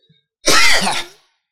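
A man gives a single loud, rough cough close to the mic, a harsh burst lasting about half a second before trailing off into silence.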